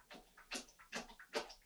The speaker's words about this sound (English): My dog will not stop chugging water in the background. Hey, Mina, I'll refill you in a second.